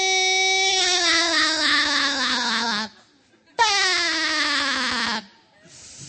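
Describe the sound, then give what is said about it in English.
A voice imitates a low-battery smoke detector chirp while the side of a hand moves up and down on the neck: two long, loud, buzzy tones separated by a short pause, each wavering rapidly and sliding slightly downward in pitch. “You got to make a sound like that, like a smoke detector that's low on batteries.”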